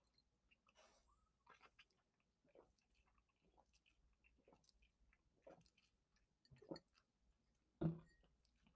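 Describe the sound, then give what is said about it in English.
Quiet wet mouth sounds and small liquid smacks build to two distinct gulps near the end as someone knocks back a shot of tequila, with no talking. “I hope you can't hear me gulping on on the air. As I am throwing my tequila back.”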